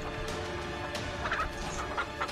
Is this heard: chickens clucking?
yes